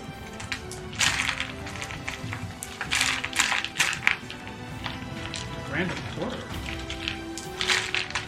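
Dice rattle and clack together inside a bag in several short bursts, jostled on and off over a few seconds with brief pauses between each shake.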